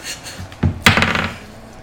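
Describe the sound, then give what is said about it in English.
Dice clatter onto a wooden tabletop, two sharp knocks in quick succession, then a brief faint rattle as they settle. No one speaks. “I use a different dice.”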